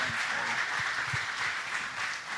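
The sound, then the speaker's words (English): An audience applauds steadily for a speaker being introduced, a dense wash of many hands clapping at once, sustained and fairly loud throughout with no voices standing out. “You give him a hand clap.”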